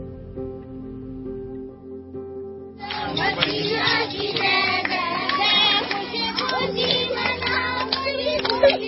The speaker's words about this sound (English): Clapping.